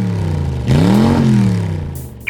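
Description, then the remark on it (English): A rented Mustang sports car engine idles with a deep rumble, then revs up sharply, its pitch climbing and holding before easing back down. It is loud and heard alone without voices. “I experienced a hint of the Diderot effect when we rented that swanky Mustang.”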